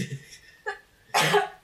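A short run of coughs, slightly off-mic: a couple of softer hacks followed by one stronger, harsher cough, with no talking.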